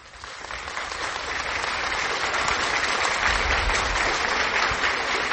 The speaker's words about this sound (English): Oh, thank you, thank you. Oh, thank you. Your applause is not needed.